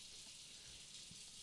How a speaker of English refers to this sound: So, that's water running in the back. We got Travis is doing some dish.